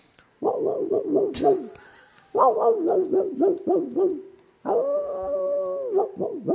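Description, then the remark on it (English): A hound bays in the distance in Kansas, heard while falling asleep, in three long, drawn-out bouts, its wavering, howl-like calls rising and falling in pitch, with brief pauses between each bout. “No, it's a hound in the distance.”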